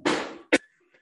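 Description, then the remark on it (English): Two coughs: a long, harsh, breathy first cough that trails off, then a shorter sharp one right after, followed by quiet. “And, you know, sorry, excuse me for the coughing and everything.”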